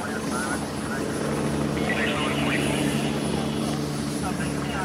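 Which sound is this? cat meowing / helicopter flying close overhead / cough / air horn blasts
helicopter flying close overhead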